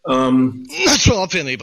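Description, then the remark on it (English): A short cough, a rough voiced throat sound followed by a harsh burst of breath, heard on its own with no talking around it. “Sorry, cough here.”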